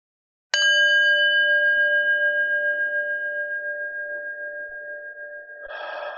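A singing bowl, sounded over Zoom to bring calm during a guided breathing exercise, is struck once and rings with a clear, layered tone that hums on steadily for about five seconds, then a second strike begins just before the end.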